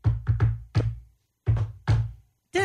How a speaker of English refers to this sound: Da-na-na-na-na-na. Right, but it has a name, and that's what people are finding out on TikTok. A knock? Close. I mean, but it's a specific knock